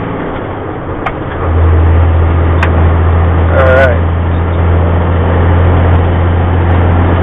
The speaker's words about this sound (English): Okay, we're getting up here on the big road at 99th Avenue. Doesn't look like there's very much traffic, so I should be at my exit in about 5 or 6 minutes if I get this truck up to freeway speed.